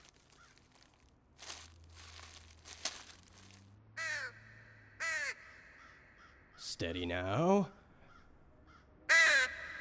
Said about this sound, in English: Crow! No, get them off of me. Sir, it was a crow, sir.